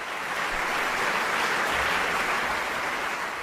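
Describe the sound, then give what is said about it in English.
A dense, steady applause sound effect played on cue during a mock commencement speech, a continuous hissing wash of clapping from many hands that holds at an even level throughout, with no voices over it. “Let's do the applause again.”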